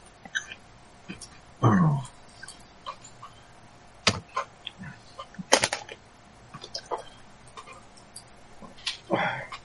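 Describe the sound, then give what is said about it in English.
Someone rummages through dice looking for suitable ones, producing scattered clicks and a few sharper clatters at irregular intervals, fairly quiet, with a brief low vocal murmur early on. “I'm doing a nick here and actually finding suitable dice.”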